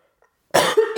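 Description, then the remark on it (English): After a brief silence, a loud, phlegmy cough of a prisoner in solitary confinement in D Block in the 1940s bursts out harshly, trailing into a rough throaty rasp before a second cough begins. “He had a very phlegmy voice and had to cough.”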